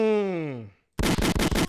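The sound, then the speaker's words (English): A drawn-out voice groan slides downward and fades, then after a brief silence a loud, rapid burst of about five gunshots cracks out in quick, even succession. “Gunshots all fucking day, bro.”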